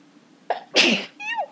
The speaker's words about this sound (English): But, hold on 1 second. I have to sneeze.